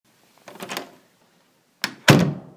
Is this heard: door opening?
yes